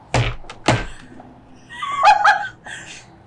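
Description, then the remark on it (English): A heavy door opens from a sanctuary into a cathedral with two solid, booming thunks close together, followed by a brief creaking groan as it swings. Fairly loud, with no talking. “The bark pushes aside, and you find yourself opening a door from one of the sanctuaries into the Cathedral of the Mother.”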